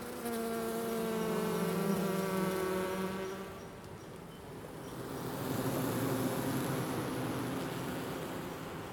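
A dense, steady buzzing of many honeybees swarming around an open hive during a hive inspection at Aspen Ridge Greenhouses, harmonic drone strongest early then blending into a broad humming wash, with no voices present.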